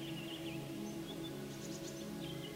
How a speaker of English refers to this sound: I hear birds singing songs.